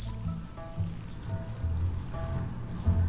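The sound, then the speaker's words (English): A cedar waxwing's thin, high-pitched trilling call runs almost without a break, rising and falling slightly in strength, over a soft low rumble of background noise. “Its vocalizations are variations of a high-pitched trilling call, like this.”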